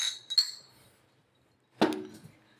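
Glasses clink together in a whiskey toast in a quick double chime with a bright ringing tone, then after a short silence comes a fuller, heavier clunk of glass.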